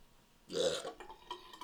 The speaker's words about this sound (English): I bet you all of our listeners are happy we're drinking beer again and all the burps. No shit. Sorry, guys. Yeah, we were probably burpless for like a good long while there.